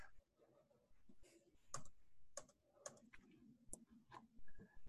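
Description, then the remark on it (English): A person makes a series of sharp, irregular clicking noises with their mouth, imitating a creature casting Dance Macabre. The clicks are fairly loud, with low throaty rasps between them and no speech. “I've been practicing my clicking and jerking around.”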